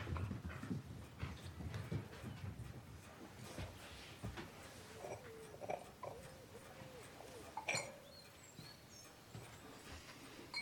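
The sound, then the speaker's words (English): Dogs pant and snuffle with scuffling movement, a few soft whimpering sounds and some background voices mixed in. “Can you get the dogs out, darling? I don't want them to hurt your feet.”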